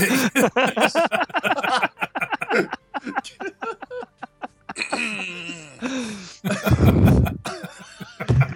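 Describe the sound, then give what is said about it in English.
A person meaningfully clears their throat in an exaggerated, drawn-out way, with a run of raspy grunts and vocal rumbles ending in a loud, harsh hack. “I clear my throat meaningfully.”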